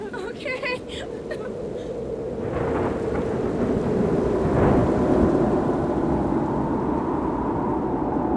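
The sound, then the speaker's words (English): A storm that came up suddenly, with steady heavy rain and deep rolling thunder, the rumble swelling louder after a couple of seconds and continuing without a break. “Storm came up, all of a sudden.”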